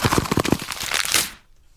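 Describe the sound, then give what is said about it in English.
A Christmas cracker being opened: a dense run of crackling, papery crinkles and sharp snaps for over a second, then quiet. “Okay, that's just me opening my Christmas cracker.”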